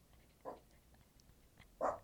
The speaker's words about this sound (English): my dog Emma doesn't believe so, because she's in the background barking every time I say the word Joe Mazzulla